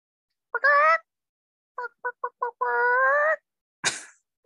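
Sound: person imitating a chicken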